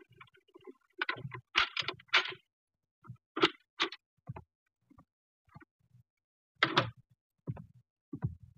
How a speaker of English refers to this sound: Then we heard muffled footsteps coming down the hall and a key inserted in the lock of the apartment door.